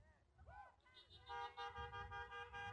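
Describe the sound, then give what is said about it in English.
Three cars honk their horns in overlapping bursts, loud, one sustained blare dominating after a brief warbling tone, with traffic rumble underneath. “Oh, I only got three cars to honk their horns on that one.”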